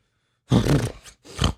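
A voice imitates an elk's bellowing roar: two loud, guttural bursts, the first long and rough, the second shorter, with a brief pause between.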